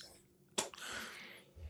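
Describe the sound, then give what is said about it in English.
A single sharp, explosive cough bursts out after a piece of chewing tobacco was inhaled into the back of the throat, followed by a long raspy, breathy exhale like a choking hack. It's fairly quiet and stands alone, with no talking. “I inhaled and a piece of the chew went into the back of my uvula.”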